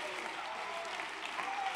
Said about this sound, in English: I wish somebody clap your hands and lift up a shout like you believe it.